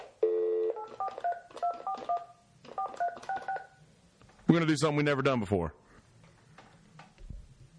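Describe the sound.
A quick run of electronic phone keypad tones beeps in short clustered bursts, fairly loud and clear, as a phone call is placed, then a man's voice speaks briefly afterward.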